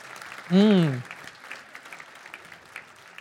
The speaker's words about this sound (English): Let's give her a round of applause, please.